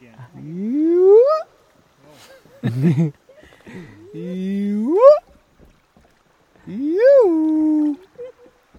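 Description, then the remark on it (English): A man's voice imitates a hyena's whooping call in the afternoon as the group floats along: several rising, drawn-out whoops with strong harmonics, separated by short pauses, loud, with no other sounds around them. “as we float along, … entertains us with animal calls. Another hippo. Hyena. Hyena again.”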